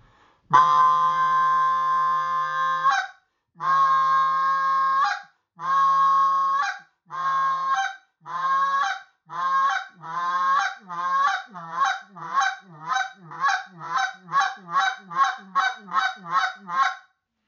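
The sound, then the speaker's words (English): A goose call blown alone: a long drawn-out honk, then progressively shorter mid honks speeding into a rapid series of quick clucks, each note cracking sharply at its end. “Now that is the long honk, shortening up, mid honk, and to the cluck.”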